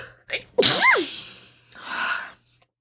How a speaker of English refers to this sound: I already got to sneeze.